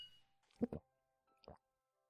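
A quick pair of light glass clinks in a drinking toast, then a single softer tap a moment later, brief and fairly quiet, with a faint ringing tail and no voices.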